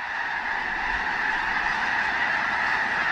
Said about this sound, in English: A closer look reveals 10,000 or more white-feathered snow geese, covering the field in one immense flock.